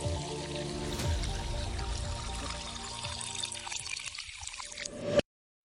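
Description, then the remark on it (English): A mimosa is poured steadily into a glass for about five seconds, a fizzy splashing whose pitch creeps upward as the glass fills, then stops abruptly. No one speaks. “In the meantime, join us as we raise our glasses and toast our delicious mimosas to Morgan Violi, a life that was taken from us too soon.”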